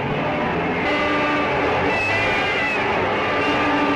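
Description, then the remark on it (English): A large convention crowd of Goldwater backers in the vast Cow Palace roars and cheers for Senator Goldwater after his name is placed in nomination, high whoops and yells rising over a dense, steady wall of noise, with a few sustained horn-like tones cutting through. “For more than a half hour, the Goldwater backers, who are in preponderance in the vast Cow Palace, whoop it up for the senator.”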